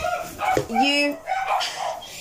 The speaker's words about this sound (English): Don't mind my dogs.